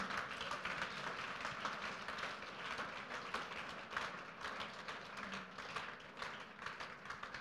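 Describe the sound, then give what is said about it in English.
A crowd applauds steadily, a dense wash of many hands clapping at once that holds at an even, fairly loud level from start to finish with no voices standing out. “Please, if you want to clap, it's free.”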